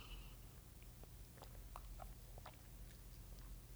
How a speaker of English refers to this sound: Oh, let me sip my tea first. Let me sip some tea.